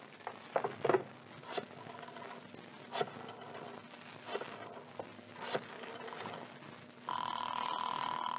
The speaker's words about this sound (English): That's funny. The phone's ringing all right. Oh, why doesn't someone answer Santa's telephone?